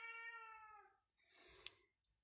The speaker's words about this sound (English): Meow to you, cat. Meow. Meow.